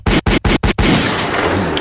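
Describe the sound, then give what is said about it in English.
A quick volley of four loud gunshot sound effects in fast rhythm, followed by a noisy echoing tail that slowly fades. No voices are heard. “Couple of gunshots, please”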